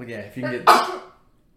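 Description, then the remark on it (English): A man speaks briefly, then a single loud, close snuffling sneeze bursts out, harsh and cough-like, trailing off quickly into silence. “Was that a sneeze or a cough?”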